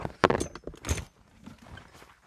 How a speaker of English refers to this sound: Let me pull up this chair right here.